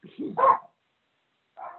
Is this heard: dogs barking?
yes